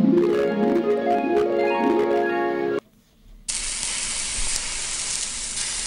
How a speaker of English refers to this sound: Oh, they're frying up my leg. I'm gonna have to put a lot of ointment on that before I sew it back on. That's it. Good. Now, brown it on the other side.